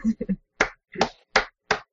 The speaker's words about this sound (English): That sounds like two hands slapping.